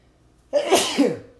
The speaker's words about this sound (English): There's the COVID sneeze all over the thing here.